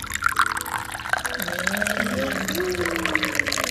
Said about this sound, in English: Okay, I think it looks like we are ready. So we are gonna have the first pour of drinking tea.